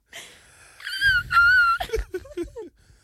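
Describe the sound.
A person's voice shoots up into a thin, squeaky whistle-register note, held for about a second with a slight wobble, then breaks into short lower squeaks and breathy sputters. No words are spoken.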